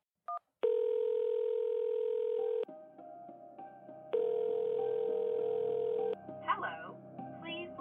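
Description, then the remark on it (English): A telephone line tone sounds in two long, steady electronic beeps separated by a pause, loud, after a brief click, as a husband phones his wife; a faint voice briefly stirs at the end. “while his wife kept herself busy assessing and approving bank loan applications, was to check on her via phone call several times a day.”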